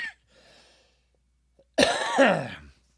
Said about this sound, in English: I was like a light cough, and then it just kept getting worse and worse and worse